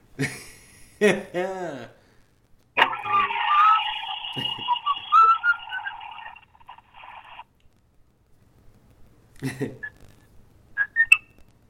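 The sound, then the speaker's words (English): A few seconds of warbling, tuneful whistling rings out fairly loud and steady, framed by short bursts of vocal sounds before and after. “I hear whistling.”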